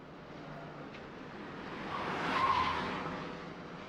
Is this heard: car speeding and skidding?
yes